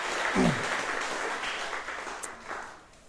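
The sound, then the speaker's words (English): An audience at a live-streamed event applauds the team who run the setup, a dense wash of many hands clapping steadily at moderate volume for a few seconds that gradually thins and fades toward the end. “And I think actually they can have a round of applause because they do an amazing job.”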